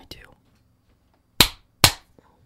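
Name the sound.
hand clap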